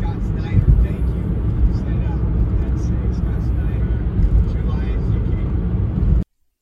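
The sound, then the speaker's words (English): A line of trucks miles long rolls past on the road while driving along, their deep, continuous rumble of engines and tires droning steadily and loudly for several seconds before cutting off abruptly. “Kind of like a measuring stick for us as we're driving along. And so far, it's in miles of trucks.”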